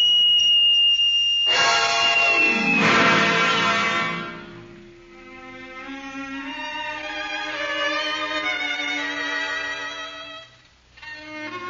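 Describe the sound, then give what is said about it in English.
A whistle blown hard: a thin high tone gives way to a loud, harsh, piercing blast that holds for several seconds, then continues as a steadier, slightly softer shrill note with no voices. “I put it to my lips and blew it at the departing Miss Rice, defiantly and with all my might.”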